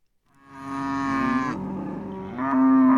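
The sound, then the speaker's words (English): A cow in a herd of dozens on a cattle ranch pasture lets out a long, loud moo that dips in pitch midway and then rises again, a sustained bellow with no voices around it. “Dozens of cows spread out across Kelly Anthony's ranch”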